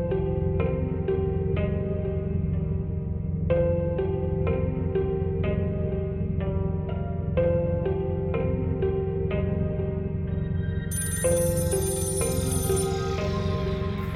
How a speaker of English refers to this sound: Before I can make sense of it, I heard an old-fashioned phone ringing by the observation deck. I followed the sound. To a rotary phone attached to the wall.